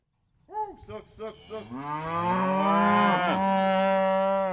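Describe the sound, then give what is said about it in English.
Cattle moo on a 50-acre cattle farm in Fulton, Missouri, as the cows are herded from one end of the farm to the other toward better grazing pasture: several short lowing calls in quick succession, then one long, loud, drawn-out moo that swells and holds, with a faint high insect-like whine underneath. “Lorenzo Powell herds cows from one end of the farm to the other”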